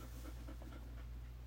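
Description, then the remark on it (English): A female puppy pants quickly and steadily, soft rhythmic breathy huffs repeating over a low hum, with no talking. “You can, puppy panting ASMR.”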